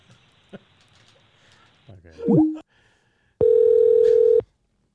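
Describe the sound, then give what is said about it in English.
A telephone line rings once on an outgoing call: a steady, loud electronic tone lasting about a second, preceded by a short swooping tone over faint line hiss. “I'm going to try your other phone number to see if you'll answer.”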